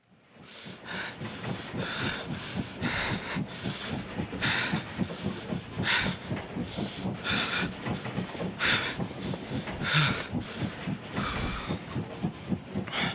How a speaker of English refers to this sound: You made it on the train just in time. The train was about to just speed up.